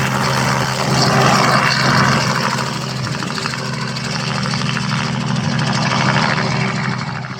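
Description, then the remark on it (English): A helicopter's engine and rotor run steadily and loudly, a continuous droning roar with a faint rhythmic chop, holding level for the whole stretch without any voices; the helicopter is flying out to capture cheetahs. “The chopper's going to go out now and capture one more sub-adult and the adult female.”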